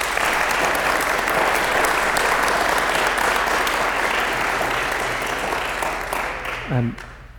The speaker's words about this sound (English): But first, another round of applause for Ruben and Elia.